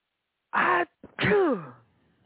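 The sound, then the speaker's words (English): A single loud sneeze: a sharp breathy intake burst, a brief catch, then the forceful explosive release trailing off, with no talking. “I just sneezed.”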